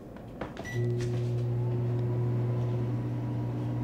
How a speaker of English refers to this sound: Microwave ASMR.